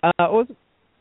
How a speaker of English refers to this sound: …, I think you're cutting out or something.